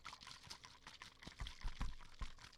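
Coconut water sloshing inside a bottle held to the ear, in irregular gurgling bursts with a few soft knocks, growing slightly louder toward the middle and end, with no voices.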